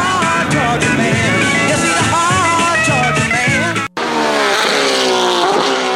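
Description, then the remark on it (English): A loud 427-cubic-inch V8 race car engine roars and revs, with pitch sweeping up and down; a dense, music-like layer fills the first part before a brief cutout, then the engine continues alone. “He's got 427 cubic inches of dynamite. He's a hard-charging man. He's Fury on wheels.”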